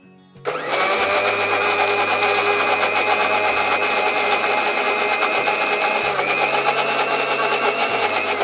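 An electric grinder grinds curry paste with added groundnut oil and water. It starts up after a brief quiet moment and runs steadily, a loud, continuous high-pitched whirring and rattling hum that stays even for several seconds with no talking.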